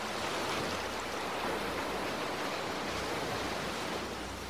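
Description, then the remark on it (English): Steady, continuous wash of ocean waves lapping, a broad even hiss with soft low rumble underneath and no distinct individual crashes. No voices are present. “You are inside the treehouse in the middle of the ocean again as the waves lap outside.”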